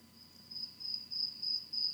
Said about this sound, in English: So, like, if we stop the conversation for a quick second, we can hear the crickets behind you.